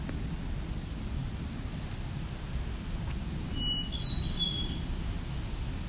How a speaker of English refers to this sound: A little warbler coming towards me, ticking. Looks to be a female. An eyeline. Grayish, whitish underneath.